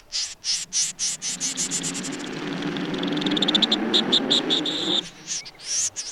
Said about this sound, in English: Listen to the squeaker. This is the pin-tailed snipe. Another snipe on our list.